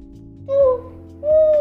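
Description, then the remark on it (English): An owl hoots twice in the distance, a short call followed by a slightly longer, steady one, with a faint low hum underneath and no other sounds. “Too-hoo, called the owl in the distance.”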